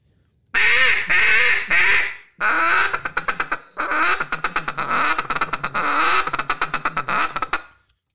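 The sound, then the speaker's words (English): A duck call blown loudly: drawn-out raspy quacks at first, then a rapid run of short, choppy quacks, with no talking; a caller's take on Corey Nickham's drawn-out calling style. “He's going like he drags out his quacks in a way that made me want to sound like that.”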